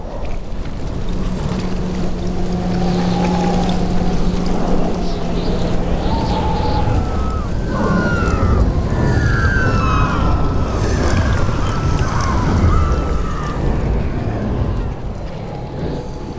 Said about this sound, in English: But what's happening is there's a wall of water traveling across the roof above us. And then it comes off the side of the house and splashes onto the ground next to them and kind of moves away.